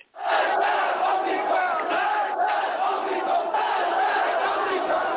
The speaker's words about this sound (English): Death to the Shah, they shouted.